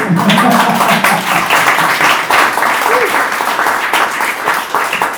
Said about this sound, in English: Yeah. Round of applause.